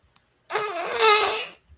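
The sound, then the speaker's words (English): Flarp noise putty is squeezed and gives one wet, buzzing squelch that sounds like a fart, about a second long and fairly loud, after a faint click. No one speaks. “It's this great stuff called Flarp.”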